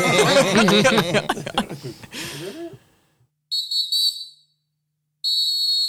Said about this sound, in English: Dude. Man, this whistle obtrusive.